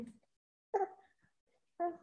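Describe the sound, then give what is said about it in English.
A dog gives two short, whiny barks about a second apart, moderately loud, mixed with soft whimpering, after a brief muffled sound at the start. “My son apparently has things to say as well, because he is like not being quiet today.”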